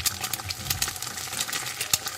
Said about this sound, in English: It sounds like bacon. Yeah, it's an egg frying.